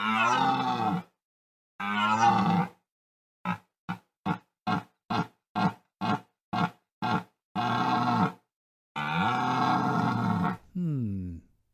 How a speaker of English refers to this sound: No, it's a stag.